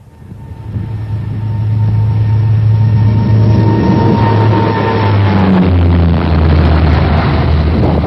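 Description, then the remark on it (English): Aer Lingus airliner (callsign Echo Foxtrot Yankee) engines roar at full takeoff power as it rolls for takeoff on a flight to Paris, swelling quickly in the first second and then holding a loud, steady rush with deep droning tones underneath. No voices are heard. “Foxtrot Yankee, roger, rolling. Full power, please.”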